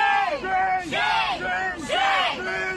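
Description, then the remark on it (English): A loud crowd at Harvard surrounds and shouts down a group of Jewish students, chanting in unison in rhythmic bursts roughly once a second, voices rising and falling together, with no pause between the cries. “For those of you listening, that's a group of feral human beings surrounding and accosting a group of Jewish students and shouting them down.”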